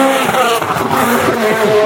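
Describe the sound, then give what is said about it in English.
A Hyundai rally car's engine roars loudly, its pitch rising and dipping as it shifts gears and sweeps past, with no voices over it. “Another Hyundai.”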